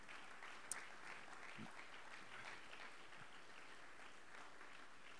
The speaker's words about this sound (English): Come on, clap your hands unto the Lord today.